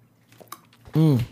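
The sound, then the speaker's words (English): Soft wet mouth clicks and slurping sounds of someone sipping water, followed by a short, loud voiced exhale like a satisfied "ahh". “Let me take a sip of water right quick.”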